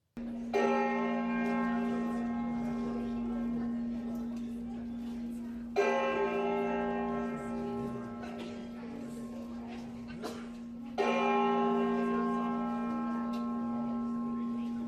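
The cracked Liberty Bell, its sound reconstructed from studies and pinging of the crack, tolls three times, about five seconds apart. Each strike blooms into a loud, sustained metallic ring with a deep steady hum that lingers into the next stroke.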